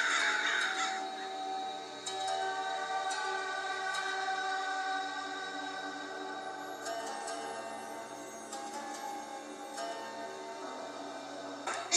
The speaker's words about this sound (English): I don't know, but when I go outside, the crows follow me around, making a racket.